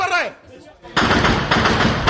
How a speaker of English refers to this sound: And everyone's shooting, because the only thing that can stop that vehicle reaching its target is a hail of gunfire. And it's terrifying.